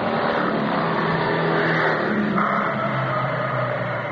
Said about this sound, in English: The driver is about to climb back into his cab when he hears the roar of the approaching motorbikes.